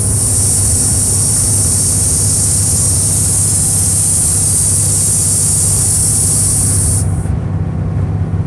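A loud, steady truck rumble with a low engine drone and a bright hiss on top, running continuously with no talking; the high hiss drops away near the end.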